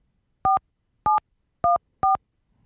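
Four crisp touch-tone beeps from a telephone keypad as an extension is dialed into an automated phone menu, each short and evenly spaced, sounding clearly with no talking.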